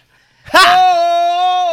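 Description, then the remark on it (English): A voice lets out a loud, raspy burst that settles into a long, steady sung note held to the end, imitating an R&B singer's scream. “His greatest R&B screams ever.”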